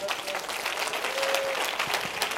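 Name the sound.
audience clapping hands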